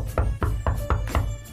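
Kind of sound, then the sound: impact, knocking on wood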